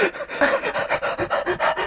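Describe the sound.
A voice imitates a dog panting: quick, steady huffs of breath, about four per second, fairly loud, with no talking.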